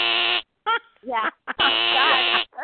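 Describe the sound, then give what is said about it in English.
Two harsh, flat, nasal buzzer blasts, a short one and then a longer one, like a game show wrong-answer buzzer. Brief bits of voice come between them. “But I do that love actually, that buzzer.”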